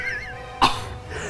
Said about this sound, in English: Is the target eliminated? Cough once for no.